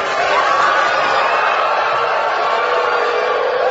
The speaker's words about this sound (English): So there was a mix. We could hear some cheering, obviously.